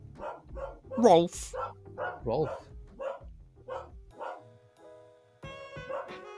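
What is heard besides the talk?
dog barking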